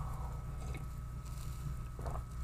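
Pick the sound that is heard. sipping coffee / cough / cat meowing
sipping coffee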